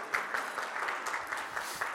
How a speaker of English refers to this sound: And so you can applaud for that.